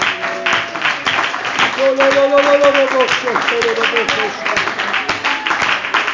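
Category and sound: crowd, audience clapping hands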